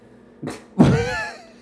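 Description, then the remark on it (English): A water balloon bursts: a short slap, then a louder wet pop with a brief splashing tail that fades within a second. No one talks over it. “Go for it. Water balloon.”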